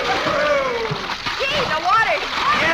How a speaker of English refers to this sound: Well, come on. Well, come on, kids. Let's all run out and jump in the pool. Okay. Gosh, I hope the water isn't too cold.